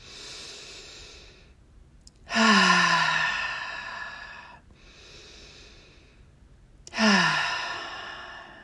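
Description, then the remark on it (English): Two slow, deep breaths, each a long airy inhale followed by a louder, sighing exhale with a slight voiced groan, with no talking. “So I want you, if you're able, to sit in a chair and take three deep breaths and hold them at the top and really exhale.”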